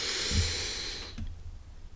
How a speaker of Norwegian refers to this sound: Jeg puster inn I nesa, ut av munnen, men gjør det som du føler best komfortabel.